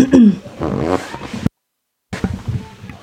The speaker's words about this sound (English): I know. It sounded like a fart. Oh my god, it was my throat.